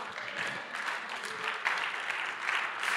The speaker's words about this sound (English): every time you clap your hands, you're making a seal, you're making an agreement that you're saying, according to your promise, let it be.